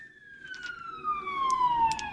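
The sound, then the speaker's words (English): A voice imitates an ambulance siren with one long, steady wail that slowly glides downward in pitch, fairly loud, with a few faint clicks in the background. “It's the … ambulance is coming to help Webb.”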